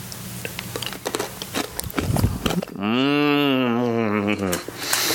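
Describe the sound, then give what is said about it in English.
Crisp crunching of a Trader Joe's espresso pillow candy, crunchy toffee espresso bits covered in dark chocolate, for a couple of seconds, followed by a long, steady hummed voice sound. “It says crunchy toffee espresso bits covered in dark chocolate. Let's have one.”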